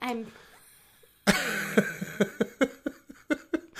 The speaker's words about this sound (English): She's back and she's exhausted. Coughing up a storm and she's tired. I have no voice.